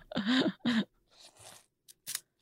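Wet, smacking sounds of noodles from a soup being chewed, starting with two loud voiced mumbling bursts, then softer slurpy crunching and a couple of short sharp smacks at the end.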